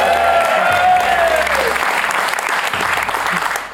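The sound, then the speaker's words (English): A crowd breaks into loud, sustained applause for Paul O'Connell, a dense wash of clapping lasting several seconds, with a brief whistle-like tone fading early on. “Round of applause for Paul O'Connell.”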